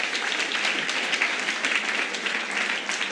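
A church audience at KXC applauds a visiting pastor of a church in Bridgetown in Portland, dense overlapping claps forming a sustained, even wash of sound at a fairly loud level throughout, with no voices standing out.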